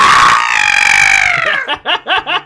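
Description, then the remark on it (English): A person loudly imitates a mountain goat's bleat: one long, strained, wavering cry lasting over a second, then three short, rhythmic bleating pulses. No words are spoken. “I'm a mountain goat that likes to bleat loudly.”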